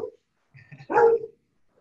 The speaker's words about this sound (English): That is my hound, Bo. He's very protective, and anyone who comes on the porch, he barks.